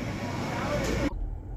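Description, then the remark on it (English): Steady low rumble and broad hiss of a car driving along a road on the way to a restaurant pickup, heard from inside the car, suddenly dropping after about a second to a quieter low hum. “So, I am back in my car, back on the road, and I'm picking up at this restaurant called Weissy's.”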